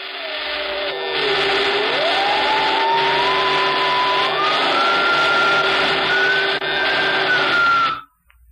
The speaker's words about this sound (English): The next morning, both men were strapped into Horn's infernal machine. There was a great crackling and sparking.